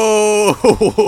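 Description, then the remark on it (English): A man lets out a loud, drawn-out scream of "no," held steady for about half a second before breaking into several choppy, strained, forceful vocal bursts. “Brother Septimus screams, "No!"”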